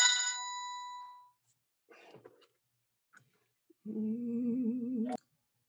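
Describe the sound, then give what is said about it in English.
A telephone rings once with a bright, bell-like tone that fades out, followed by soft handling noises and then a steady, buzzy electronic tone lasting about a second. “You know, I was going to edit that out, that phone call, but it was an urgent call for the vehicle owner.”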